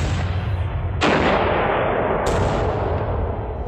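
Cannons boom in succession, two loud blasts spaced over a second apart, each leaving a long rumbling roar that carries into the next, with no voices present.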